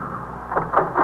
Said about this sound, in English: I instructed Farrell to stop the car.